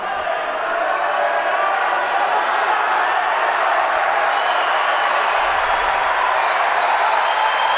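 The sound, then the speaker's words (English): A large Friday night tennis crowd roars and cheers during a Djokovic–Wawrinka match, after Wawrinka's forehand winner brings advantage Wawrinka. It is a dense wash of voices and applause that stays loud and unbroken throughout, with scattered whoops rising above the din. “Friday night crowd is pumped up.”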